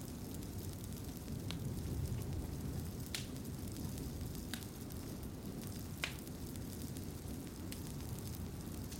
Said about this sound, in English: The fire crackles and pops in the hearth, casting dancing shadows and a warm, flickering glow throughout the room.